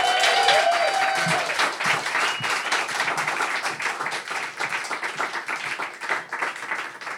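An audience applauds steadily for several seconds for an improv performer, dense clapping with a brief whoop or cheer near the start before the clapping gradually thins out.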